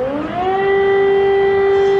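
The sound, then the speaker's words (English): Air raid sirens in the streets of Kiev, Ukraine, as Vladimir Putin declares war on Ukraine, wind up in pitch and then hold a loud, steady wail that carries across the open air, with faint background noise and no voices. “The sirens heard throughout the streets of Kiev as Vladimir Putin declares war on Ukraine, shattering peace in Europe.”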